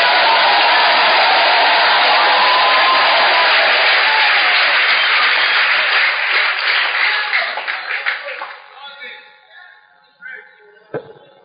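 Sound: audience clapping and shouting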